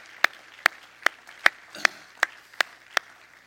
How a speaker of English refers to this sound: Everybody clap your hands to the Lord this morning.